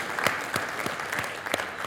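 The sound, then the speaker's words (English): The East Location audience applauds for Pastor Todd, the East Location pastor: a steady wash of many hands clapping with a few sharper individual claps standing out, sustained at moderate loudness without any voices. “East Location, I hope that you give him a round of applause right now.”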